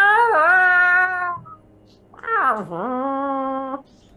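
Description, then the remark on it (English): A disgruntled stray cat caught in a cage lets out two long, whiny, loud meows separated by a short pause; the second call swoops down low and drags on in a complaining wail. “And it's just the two of you in the Humvee, and in the back you hear the disgruntled sounds of a cat, you know, like a stray cat caught in a cage.”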